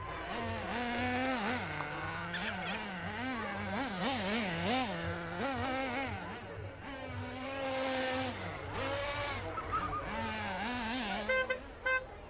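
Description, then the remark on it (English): Several petrol-powered model car engines buzz loudly and continuously, their high whine rising and falling as they rev, the engines overlapping, with no voices heard. “A couple of fellas sitting in the back of a van, they're madly refilling some model cars with petrol.”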